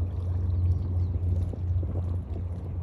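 Water sloshing and lapping by a boat at an island in Japan, a continuous textured splashing over a steady low rumble, with no voices present.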